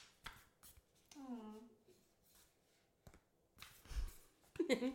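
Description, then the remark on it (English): A deck of cards is shuffled in short, crisp bursts of riffling and flicking, with a brief stretch of someone speaking or humming in between. “Maybe I'll shuffle it this time.”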